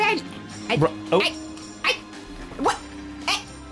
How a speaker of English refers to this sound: There's a dog barking. Yes, that's Molly.